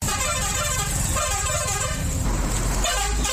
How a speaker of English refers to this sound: Buses from Kampala, Uganda are arriving at the bus park in Juba in a rush, due not only to the long journey of more than 12 hours, but also for fear of insecurity on the Juba-Numuli Highway.